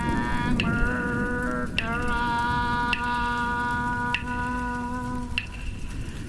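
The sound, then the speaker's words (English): Steady rain patters, with louder drips landing about once a second, while a sustained, humming musical drone holds underneath throughout. “You to focus on the rain.”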